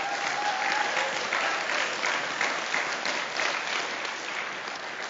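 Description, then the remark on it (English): A crowd applauds steadily, a dense wash of many hands clapping at a sustained, fairly loud level for several seconds without easing off, with no voices rising above it. “Can we give them just another round of applause?”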